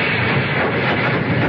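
A train arriving at a station, heard as a steady, dense rumble and hiss that stays at an even, fairly loud level throughout, with no voices.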